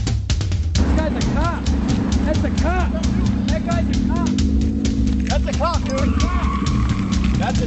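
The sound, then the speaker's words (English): An undercover police car's tires squeal as it hurries away, in a series of short, rising and falling chirps over a steady, loud engine rumble, with a few longer tonal screeches near the end. “You hear them tires screech.”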